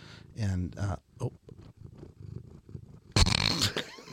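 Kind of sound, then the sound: animal, cat purring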